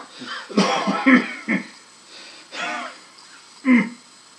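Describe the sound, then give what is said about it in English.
A run of rough, raspy coughs from a man: a cluster of hacking bursts, then a wheezy pause, a drawn-out hoarse cough, and one final sharp cough. “And he sort of coughs as if the moment of that had exhausted him.”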